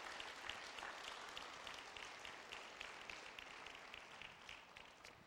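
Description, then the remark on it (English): A church audience claps together to give God glory and praise, in a dense, steady burst of applause, many hands overlapping into a continuous crackling wash that holds at an even level before easing slightly at the end. “Can we give God glory and praise with a hand clap?”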